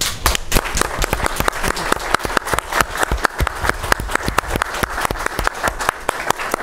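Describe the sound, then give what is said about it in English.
Sustained audience applause for an ambassador and a panel at an event fills the whole stretch, a dense, steady patter of many hands clapping, fairly loud and even throughout with no voices. “Thank you very much, Ambassador, and thank you to our distinguished panel, and I think we want to give you another round of applause and see you on your way.”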